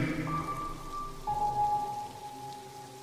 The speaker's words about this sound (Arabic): أصبحت تحب قطرات المياه تلك عندما تتساقط مرة أخرى تلو الأخرى